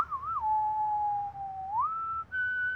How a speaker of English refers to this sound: Funny. Can't talk, but he can whistle.